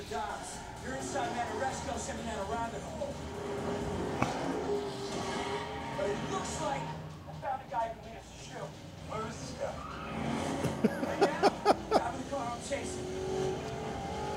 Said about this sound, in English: And now a random car chase. We don't know who's chasing who or what's going on.